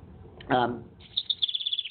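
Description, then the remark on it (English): A bird gives a short, harsher call, then breaks into a quick run of high, thin chirps repeated in a steady rhythm, clear with no talking. “There's a bird.”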